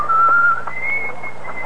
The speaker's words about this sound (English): he headed for that center of London's evening gaiety, the West End. And there, as he walked down the crowded Haymarket, whistling a jaunty tune...